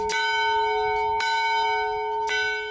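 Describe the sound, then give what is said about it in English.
An old bell from a 1900 schoolhouse, now a boys' camp bell, rings out three times at an even, unhurried pace, each loud clang leaving a rich, sustained hum that carries into the next stroke. No voices. “When Boys Camp imported this bell from a 1900 schoolhouse, it was a big deal.”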